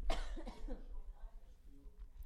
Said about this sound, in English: Let me just cough.